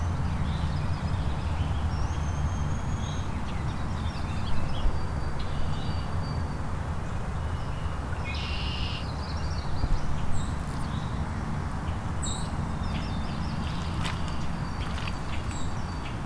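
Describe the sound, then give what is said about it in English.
A white-throated sparrow sings thin, drawn-out whistled notes in a few separate phrases over steady low rumble and rustling outdoor noise, and other birds chip faintly now and then. “Can hear a white-throated sparrow singing.”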